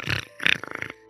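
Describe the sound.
A voice imitates snoring: two short raspy, gurgling snorts, then a rattling pulsed drone that fades out, all within about a second, fairly loud and with no other talk.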